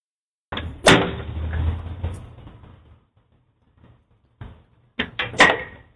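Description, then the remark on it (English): Loud, sharp impacts of a little boy hitting a door with a whip, a heavy crack followed by a rumbling rattle, then after a short pause a rapid cluster of three or four more strikes, with no talking. “This little boy hitting the door with the whip.”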